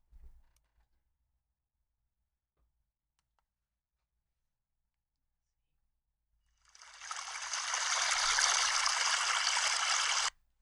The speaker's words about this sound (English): Because I pulled up, like, this water to, like, pour a little bit of libations. Let's do that. I'm going to pour some libations. So let's pour some libations for our beloved Reverend Dr. Martin Luther King Jr.